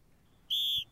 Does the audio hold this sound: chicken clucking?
no